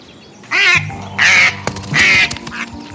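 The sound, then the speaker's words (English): Two wild ducks that have landed in a pool during mating season quack loudly, three harsh nasal calls spaced about half a second apart and a softer fourth one, over a low steady background tone. “A couple months before all this, these two wild ducks landed in my pool.”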